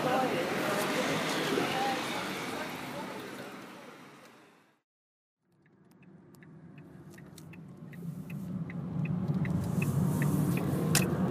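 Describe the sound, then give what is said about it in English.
Loud, hissy outdoor traffic noise drops into a brief silence, then a steady low engine rumble from inside a car takes over, with faint scattered clicks above it. “Oh, now I'm in the relative safety of the car once again.”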